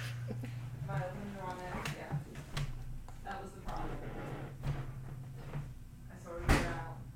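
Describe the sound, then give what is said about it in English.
A door rattles and clunks as someone fumbles with it, a few sharp knocks and a louder thud near the end as it opens, with people talking over it. The door is reversible. “How do you open this door?”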